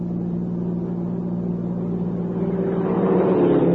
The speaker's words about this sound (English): Hey, look. There's a car pulling out from the lodge road.